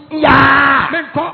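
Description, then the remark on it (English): A male preacher mimics a child's drawn-out scream, loud and strained, holding one high, harmonic-rich wail for most of a second before trailing into shorter rising cries. “Some days when you ask me to go to school, I'll lie on the floor and I'll be screaming.”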